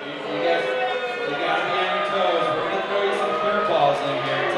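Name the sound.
crowd booing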